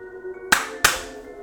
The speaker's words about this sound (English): And the double clap signifies the start of an episode.